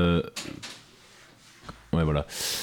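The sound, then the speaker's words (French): A studio door is pushed shut with a couple of clunks and a sharp latch click, while people talk briefly before and after it. A soft rush of noise trails off at the end. “Et va fermer la porte après aussi.”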